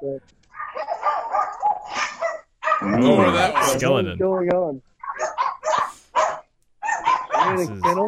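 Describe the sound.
A dog barks and yips in a quick cluster of sharp, high-pitched bursts, loud, with people talking before and after.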